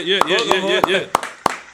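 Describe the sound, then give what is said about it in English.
Five sharp hand claps land at a steady, unhurried pace, crisp, with a voice carrying on underneath between them, given as a round of applause for a guest being introduced. “Round of applause for my man”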